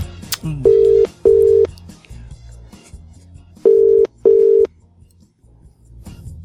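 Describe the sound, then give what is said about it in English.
A telephone ringing tone on a call placed through a radio show's phone system: two double rings, each made of a pair of steady, mid-pitched buzzing tones, loud and evenly spaced, with a pause and faint low background noise between them. “Stick that in the phone system.”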